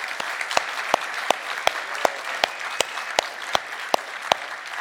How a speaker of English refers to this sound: give her a round of applause for serving.